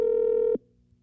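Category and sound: signal or alarm, telephone dial tone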